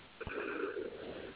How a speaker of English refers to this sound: And take a deep breath, breathing in through the nose.